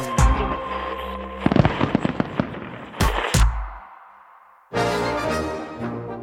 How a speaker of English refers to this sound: Each 4th of July, as fireworks light up the night sky and red, white, and blue flags fly overhead, Americans scarf down hot dogs, 150 million of them to be exact.